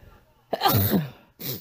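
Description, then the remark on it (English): A loud sneeze from a person dealing with a cold bursts out with a sharp onset and breathy tail, followed a moment later by a short exhaled sniff or second breathy burst. “So, if that sneeze was a little loud and hurt your ears if you're wearing headphones, I apologize.”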